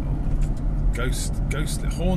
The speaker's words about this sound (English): There's still a fair bit of traffic. But, it's generally a lot quieter.